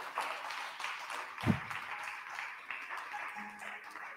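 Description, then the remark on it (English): An audience claps their hands for God after a prayer, a steady wash of many overlapping claps that holds at an even level throughout, with one brief low thump partway through. “Come on, give God a hand clap if you can.”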